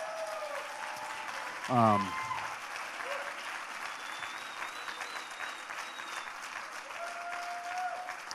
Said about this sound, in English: So why don't you guys stand up? We want to give you a round of applause and honor you as a church.